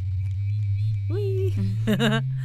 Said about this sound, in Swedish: Poängen med en vibrator är att den stimulerar de här nerverna i klitoris mycket intensivare än fingrar och tunga och så vidare kan.